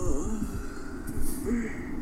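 A person yawns with a drawn-out, breathy sound that rises and falls, set against a steady low rumble of road and engine noise.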